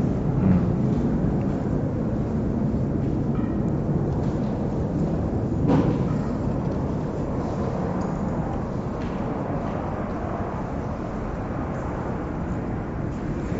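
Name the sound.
airplane flying overhead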